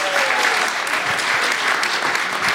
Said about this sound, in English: Thank you so much. Big round of applause